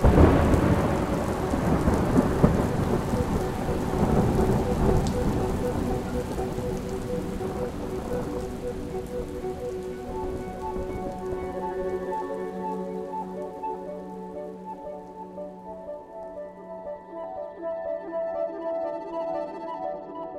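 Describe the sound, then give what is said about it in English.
A very large thunderstorm with heavy rain and deep rolling thunder passes through a concert venue in the opening seconds, then the roar thins as sustained, steady musical tones rise and hold over the fading storm. No one speaks. “There's a storm coming, so yeah.”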